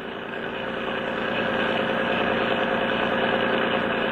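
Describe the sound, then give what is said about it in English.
A motorboat engine revs up as the boat is given the gas, its loud, rumbling drone swelling over the first second and then holding at a steady, throaty roar with no voices. “Hey, Chuck, give her the gas!”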